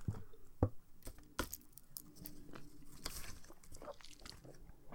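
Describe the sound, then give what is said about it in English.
A child's toy screwdriver twists little yellow plastic screws holding the legs of a toy dinosaur, making irregular clicks, small rattles and scraping ticks, with a few sharper snaps standing out and no talking. “Well, I have this toy dinosaur... the legs are fixed together with little yellow plastic screws. It comes with a toy screwdriver.”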